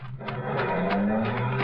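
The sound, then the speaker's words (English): A car engine revs steadily as the vehicle, parked at the deep end of a gateway with two men climbing into it, drives off, its rumbling tone rising slightly, loud with no voices. “All I know is that a car was parked at the deep end of the gateway and two men were just climbing into it.”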